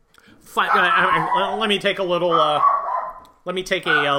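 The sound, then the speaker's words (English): A human voice imitates a dog barking in a loud run of drawn-out, yowling woofs, then pauses briefly before another burst starts. “So I would you shut that dog up, gosh!”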